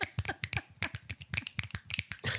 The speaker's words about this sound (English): I don't even think we need to clap this week. This week we're gonna snap like we had a poetry club.